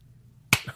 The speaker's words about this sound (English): Slow clap. Oh, I got a slow clap on that.